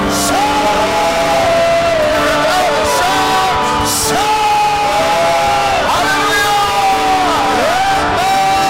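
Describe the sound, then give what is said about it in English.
An audience shouting together in a loud, sustained roar of many voices, with rising whoops and yells cutting through the steady crowd noise for several seconds. “Should you love a shout? You can love a shout.”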